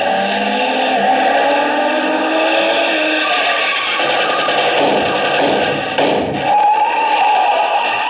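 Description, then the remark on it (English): A car engine roars loud throughout, its pitch climbing as it accelerates, with a few dull thumps and rattles partway through and no voices. “Toward the same destination as another car.”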